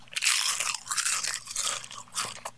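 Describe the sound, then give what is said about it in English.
Crisp crunching of a puffed, airy Doritos 3D tortilla chip being bitten and chewed, with a run of brittle snaps that fade out and one last sharp crackle. “Take a look at this puffed up taco. This is going to have a big crunch.”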